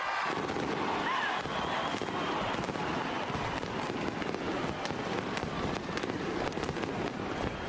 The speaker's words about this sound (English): Pretty impressive fireworks display going on just behind me there, above the Arc de Triomphe.